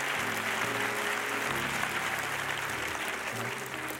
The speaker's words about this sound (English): So come on, let's give God a good hand clap offering for his word.